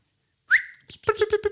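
A person gives a short, sharp whistle that rises and holds briefly to trigger a small plastic keyring finder attached to sunglasses; after a pause it answers with a quick run of four buzzy, evenly spaced beeps, fairly loud, with no talking.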